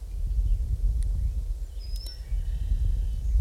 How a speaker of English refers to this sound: I heard some red-winged blackbirds and a lot of other birds I couldn't identify by their calls.